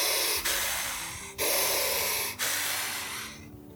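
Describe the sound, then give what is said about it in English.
A person imitates heavy breathing up close: four loud, breathy exhales in a row, each a long airy rush that fades before a brief gap, with no talking. “All Val can hear is me breathing, like, heavy.”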